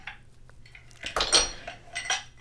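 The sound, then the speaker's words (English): Ice cubes for a cocktail clatter into a glass, a cluster of bright, hard clinks and rattles in quick succession, then one more sharp clink a moment later, with no talking. “No, you can just put them in there.”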